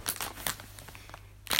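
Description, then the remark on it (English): Crunching of M&M candy-coated chocolate right in front of the microphone: a few sharp, crackly bursts at irregular intervals, loudest at the start and again at the end, with softer crinkly bites between. “Crunching in front of the microphone. The M&M chocolate, it's bloody good.”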